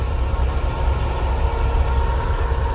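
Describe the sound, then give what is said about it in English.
A truck rumbles past in a loud, steady roar of low engine and road noise with a broad hiss on top, holding level for a few seconds with no voices. “Yes, you did hear a truck.”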